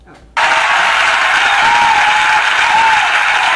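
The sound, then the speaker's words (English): A short burst of audience applause for another show's team starts abruptly after a brief quiet moment, a dense, steady wash of many hands clapping at full volume that holds evenly for a few seconds. “They definitely deserve a round of applause for the crowd and the audience they're bringing”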